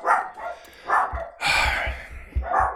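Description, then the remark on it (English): Dogs barking excitedly after the doorbell rang, a run of loud, overlapping barks and yips coming in bursts with brief gaps, no talking underneath. “Oh, God, the doorbell rang, and now the dogs are going crazy.”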